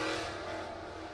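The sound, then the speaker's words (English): A motorcycle engine roars loudly, revving with a steady, rough drone for about a second as it passes. Nobody talks. “That goes on motorcycle guy.”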